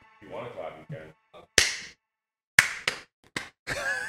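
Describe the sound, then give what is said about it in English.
Brief murmured talk, then a single sharp hand clap rings out to sync a recording, followed after a pause by a quick, uneven run of four more crisp claps, with voices mixed in at the end. “Do we need to clap?”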